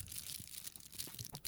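The aluminum foil wrapper of a Crunky candy bar being torn open: a faint, steady papery crackle broken by brief louder crinkles and crunches, with no voices.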